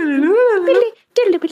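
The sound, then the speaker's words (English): A voice imitates rainbow sparkle noises: a wavering, high-pitched sung tone that warbles up and down, breaks off briefly, then returns with a shorter bright burst. “I feel like it would just be like sparkle noises and just like...”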